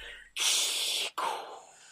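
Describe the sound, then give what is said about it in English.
A voice imitates a mechanical respirator: one loud, harsh, hissing inhale followed straight away by a slightly softer exhale that fades out. It is heard alone, with no talking. “read the following with a mechanical breathing sound, all approximately 3.5 syllables.”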